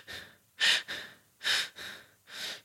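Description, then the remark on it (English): Slow, deep belly breaths drawn in all the way to the belly and let out, about three full cycles in a steady rhythm. Each breath is an airy, fairly soft rush with no talking. “Number two, when you're breathing, breathe all the way till your belly.”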